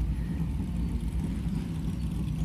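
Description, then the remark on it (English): Classic racing cars, an AC Cobra and E-Type Jaguars in grid positions one to three on the start-finish straight, one driven by Jenson Button, idle together on the starting grid. Their engines make a deep, steady, throaty rumble that holds continuously with no voices over it. “Those cars are AC Cobra, E-Type Jaguar, currently being driven by Jenson Button.”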